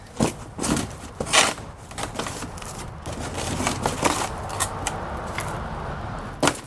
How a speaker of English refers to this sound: So even though it's like an easy to manage rectangle, as long as I take all the sides apart. And I hope you like the sound of the cardboard being torn via my cell phone's microphone. Because you're gonna hear it a lot.